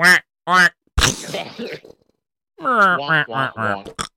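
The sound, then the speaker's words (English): A voice does a loud, nasal duck-quack imitation: two short quacks, a rough breathy burst, then a pause before a longer run of rapid, honking quacks close to the mic. “The duck.”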